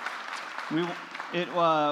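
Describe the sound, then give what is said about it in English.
A crowd claps steadily in a dense, even wash of applause for the gather team who erected a tent for the start of Advent, while a single voice speaks two short phrases over it. “If you saw the tent, I just want to ask you all, if you'll give a round of applause for our gather team, everybody.”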